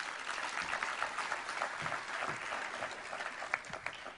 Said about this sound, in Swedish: En applåd för honom.